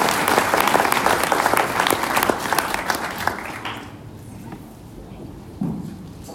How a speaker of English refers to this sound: Take your seats and thank you, worship team. Yes. This is give our worship team a round of applause.